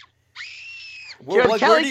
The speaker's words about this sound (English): Why do you just have that? Like, what's that from? I looked up YouTube, little girl screaming, because I looked up YouTube, Brandon screaming, Kelly Kelly comes out, and that's what came up.